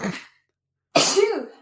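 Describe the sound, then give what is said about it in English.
A person sneezes once, loud: a short breathy intake, a brief pause, then a sharp explosive burst trailing off into a voiced tail. No talking. “Bless you.”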